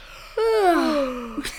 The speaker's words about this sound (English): We both yawned.